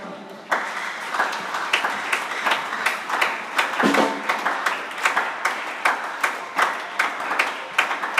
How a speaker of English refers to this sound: The way you are clapping, I see you are not in the house of God.